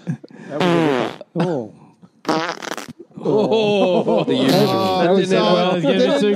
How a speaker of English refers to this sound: There it is. Everyone loves a fart. Never not funny. Yeah. Oh, tell me a fart sound isn't funny.